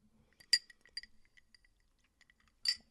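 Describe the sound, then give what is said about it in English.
Someone sips from a glass of water: two bright, ringing glass clinks, one early and one near the end, with faint little ticks and soft handling noises between them and no talking. “So, and I'm sorry for the people out there that get annoyed if I like take a sip of water.”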